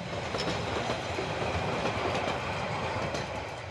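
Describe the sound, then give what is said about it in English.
A steady, loud rumble of train wheels clattering along the rails, with faint rhythmic clicks in a continuous roar and no voices: a train travelling at night with its lights out, carrying O'Connell and the Barcelona team to regional matches during the Spanish Civil War. “When O'Connell and the team travelled to play regional matches, they went by train at night with the lights out to avoid bombardment by Franco's warships stationed at sea.”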